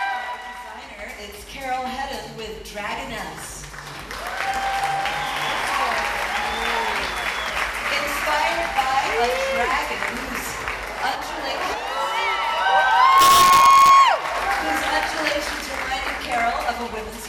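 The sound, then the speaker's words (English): A large audience at a fashion show cheers and applauds steadily as models show outfits, with excited high-pitched shrieks and squeals rising above the din, growing louder toward a sharp burst of screaming near the end. “Throughout the night, we see a dazzling array of outfits, modeled by a diverse ensemble of models, to cheers, laughter, and shrieks of delight from the audience.”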